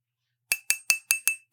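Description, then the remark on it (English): Glasses clink together in a toast six times in quick, evenly spaced succession, each tap bright and briefly ringing, heard on their own at moderate volume after a short silence. “Well, I'll at least improve the little clink.”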